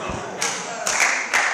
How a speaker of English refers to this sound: I said, don't clap. We are not here for you to clap.